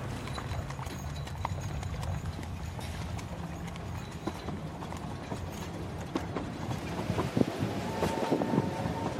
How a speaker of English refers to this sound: So now we've got London Bridge, we've got the old trains coming to London Bridge now behind us. We're in a kind of covered walkway.